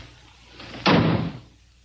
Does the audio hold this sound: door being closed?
yes